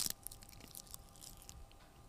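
Crisp crunching and chewing of dried seaweed, with a sharp bite at the start followed by irregular crackly chews, no talking.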